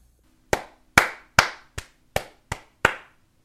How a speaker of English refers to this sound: Let's have a big round of applause for Frank and Joanne, my parents. Right? Is everybody clapping right now as you're listening to this? Because I hope you are.